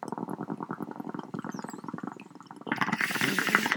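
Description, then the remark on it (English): Water bubbles in a rapid, steady gurgle as a person takes a hit, like a bong being hit, then swells into a louder, hissier rush of air and bubbling for the last second. No one speaks. “Hold on while I take a hit.”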